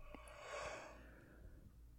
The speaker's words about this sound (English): As I yawn now, drink some coffee.